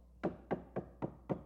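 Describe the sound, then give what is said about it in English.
Five firm knocks on a door by a concerned mother checking on her son, evenly spaced in a steady rhythm, fairly loud, with no voices around them. “His mom just knocking on the door.”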